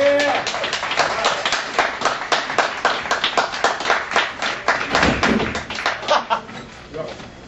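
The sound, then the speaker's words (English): An audience claps steadily for blues singer Watermelon Slim, the truck driving king of the blues, as he is introduced, a dense, crackling round of applause that stays strong for several seconds, then starts to thin out and fade toward the end. “All of you, please give a round of applause for the truck driving king of the blues, Mr.”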